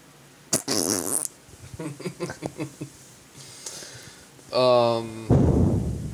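A series of farts against a metal chair seat: a sharp opening burst, a run of short sputtering pops, then a long buzzing toot and a rough, loud final blast.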